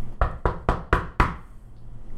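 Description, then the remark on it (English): Five firm, loud knocks on a wooden door in a quick, even rhythm, followed by a faint hum with no voices. “While he's like leaning against the door looking under it, I'm just gonna knock on the door so it hits him in the ear.”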